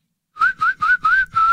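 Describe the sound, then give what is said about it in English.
A person whistles five short, clear notes in a quick, even rhythm, each sliding slightly upward in pitch. The whistling is fairly loud, with no talking. “Let me wet my whistle.”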